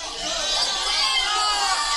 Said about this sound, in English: Encore. Only one song in, and the French crowd is calling for an encore already.